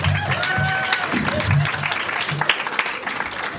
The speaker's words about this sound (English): Clap for her.